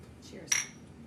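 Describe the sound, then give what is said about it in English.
Two glasses of beer tap together once in a toast, giving a single bright clink with a brief ringing tone that fades quickly. “Cheers.”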